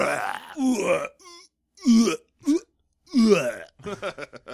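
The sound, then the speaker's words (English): A voice imitates a guttural made-up orc language that sounds like almost vomiting: a string of harsh, croaking retching and belching noises in short bursts, fairly loud, with brief pauses between. “one of my favorite things is the Gith orc language, which is apparently just almost vomiting.”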